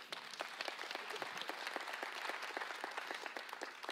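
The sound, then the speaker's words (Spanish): An audience applauds steadily, many hands clapping in a dense, sustained wash that holds at an even level throughout, with a few sharper individual claps standing out, and no voices. “Un aplauso”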